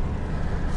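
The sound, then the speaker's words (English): Fast cars rushing past, heard through the open window of a car with no engine sound, make a steady, loud roar of road rumble and hiss that holds level for under a second, with no voices. “This is our car, no engine sound, but I left the window open so we can hear some cool cars going past us, really fast.”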